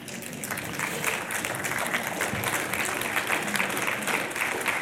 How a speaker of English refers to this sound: You can clap at that.